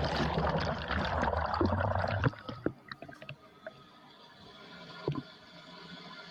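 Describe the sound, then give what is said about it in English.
A toilet flush recorded by a GoPro camera inside the bowl: a loud, churning rush of water for about two seconds, then sudden quiet with scattered drips, gurgles and a faint lingering trickle. “This is pretty much a GoPro get flush.”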